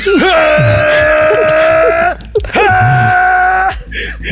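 Two long, loud screams from one voice, each held steady at a strained pitch after a quick rising start, separated by a short breath-like pause, with no other talking.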